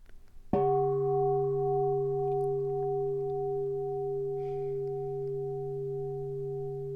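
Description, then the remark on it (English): A single strike of a mindfulness bell, rung by members of the Awakening Valley Sangha, followed by a long, steady ringing tone with layered low and mid overtones that slowly fades over several seconds, with no talking. “To help us switch gears from anarchism to Buddhism, Carl and Camlin from the Awakening Valley Sangha are going to invite us to mindfulness with the sound of a bell.”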